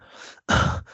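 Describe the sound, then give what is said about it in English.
A person imitates the pained gasp a video game character makes when hit: a short, quiet intake of breath, a brief pause, then a louder, strained breathy exhale with a faint trailing breath after, with no speech. “And you move back like it shifts you, but that breathing really. Like it gets me, man.”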